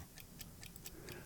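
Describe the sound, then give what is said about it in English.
A mechanical timer, still ticking after it has rung, ticks quietly and steadily, five or six crisp, evenly spaced clicks in quick succession over a low background rumble, with no voices. “Yeah, the little dot is at like 1 though, but it just rang. But it's still ticking.”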